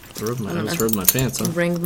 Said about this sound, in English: I'm wearing a pin jacket. You can hear it all jingle jangle.